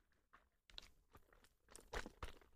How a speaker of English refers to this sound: Shaking up some lemon cayenne juice.